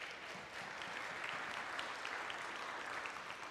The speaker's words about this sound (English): Oh, thank y'all for the music today. Wasn't that great? Give them another round of applause, please.